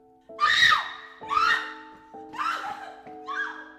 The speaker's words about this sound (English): I screamed so loud I fell over, and I started crawling backwards.